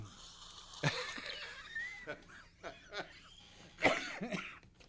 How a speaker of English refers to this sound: Hey, you got the cough for it. Yeah, I know it.